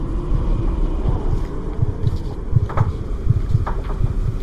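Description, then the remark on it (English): Howling wind rushes through trees in a continuous, low, gusty roar, with a thin steady whistle faintly above it and brief rustling bursts scattered throughout. No one speaks. “The howling wind outside is whistling through the trees.”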